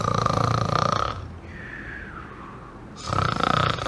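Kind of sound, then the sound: human body sound, snoring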